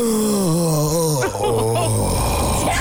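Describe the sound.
A voice imitates a long, low moan, acting out moaning heard from behind a door in a story being read aloud, a sustained wavering groan that slides downward in pitch and then rises briefly, loud and continuous for about three seconds with no other talk.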